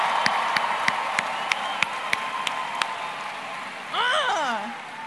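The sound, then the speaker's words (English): A crowd cheers for fellow competitors at a competition over a steady wash of noise, with sharp, evenly spaced claps in a rhythmic beat, then a loud rising-and-falling "whoo" shout near the end. “So come on, let's cheer for your fellow competitors.”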